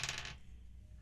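Dice are rolled for a perception roll, clattering across a hard tabletop in a quick burst of bright, rattling clicks that stops within a fraction of a second, followed by a low, quiet background hum.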